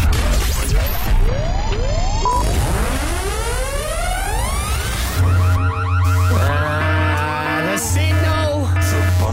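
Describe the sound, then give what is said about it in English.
A loud, chaotic alarm blares throughout in a studio, signalling three hosts to go on air non-stop until 9 a.m. the next day, with rising electronic wails sweeping upward over a dense clatter of noise and steady buzzing tones. No one speaks. “At some point this week, an alarm will go off.”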